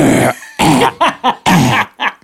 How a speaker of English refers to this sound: Please cough louder into the mic for me.